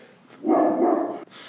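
A dog barks once in a drawn-out, fairly loud burst lasting under a second, with a quieter, airy hiss before and after and no one talking.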